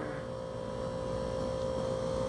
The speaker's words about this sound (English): Oh, we got the fridge going off. We should... Maybe it's not that bad because it's so far.